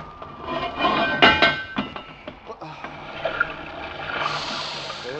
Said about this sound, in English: Surface, stand by all tubes, ready on all four engines. Hatch is clear. All right, open her up. Let's get some air.